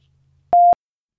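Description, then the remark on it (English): A phone busy tone sounds after a call is hung up early: a single short, steady mid-pitched electronic beep, loud and alone, after a faint low hum fades out. “I hung up on them early. I knew they were going to do it to me. So we ran into some technical difficulties at the end.”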